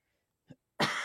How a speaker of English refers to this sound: Oh man, it sucks honestly though, but I hear both of you guys coughing like that, and even though, you know, it doesn't sound too bad right now, just the fact that it's been lingering for so long, like, it makes me just so fucking worried